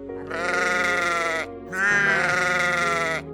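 A sheep bleats twice, two long, wavering cries separated by a short pause, loud with no other sounds around them.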